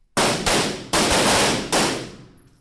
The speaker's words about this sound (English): To get to the bottom of David's question, I dropped in at the Oakland Police Academy in Auburn Hills, where recruits were in the middle of shooting drills. On this particular course of fire, they have to hit the silhouette who has a gun in his hand,